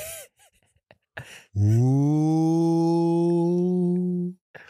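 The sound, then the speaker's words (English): A single long, loud drawn-out vocal "woooo" of a Woo Pig Sooie hog call for the Arkansas Razorbacks, rising in pitch and then held steady for nearly three seconds, after a few faint short breaths and clicks. “Yeah, you got to do the Woo Pig-Sui 3 times.”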